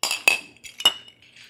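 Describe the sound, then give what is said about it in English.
Glasses clink together in a toast in Kansas City, two bright ringing taps about half a second apart with a short shimmering tail, fairly clear. “Cheers. Cheers. Cheers, ladies.”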